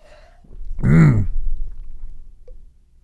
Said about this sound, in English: Oh, your burp. Real men? Damn, real men cover their mouth when they burp, eh?